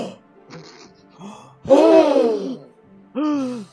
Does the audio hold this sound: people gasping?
yes